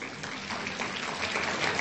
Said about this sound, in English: Yes, definitely applause.